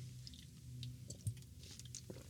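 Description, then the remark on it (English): Quiet mouth sounds of someone taking a swig of water, soft wet sips followed by a single distinct gulping swallow, with no talking. “Here goes a swig of water.”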